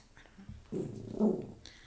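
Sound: dog growling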